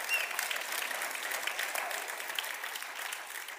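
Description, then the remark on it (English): A room full of people claps steadily for a few seconds in praise of the speaker's bride, the dense applause sounding even throughout without fading out. “Can we put a hand clap of praise for my beautiful bride?”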